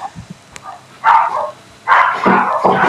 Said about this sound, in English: Let me just get rid of these dogs.